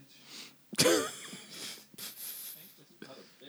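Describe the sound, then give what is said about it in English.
A few sharp nasal sniffs and breathy exhales, fairly loud, with a strong burst near the start, mixed with soft laughing breaths and a hint of voice, as a person sniffs while laughing. “I keep sniffing because I'm laughing.”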